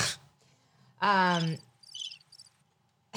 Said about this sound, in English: That is not crickets. No. No, that's like birds. I thought it was birds. I hear birds.